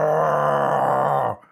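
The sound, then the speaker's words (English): A voice imitates the roar of a big pink hairy monster: one sustained, loud, growling bellow with a rough, harmonic-rich tone, holding steady for over a second before cutting off abruptly. “A big pink hairy monster. That's never going to come out. Sweet. He roars.”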